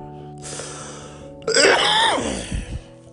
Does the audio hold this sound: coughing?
yes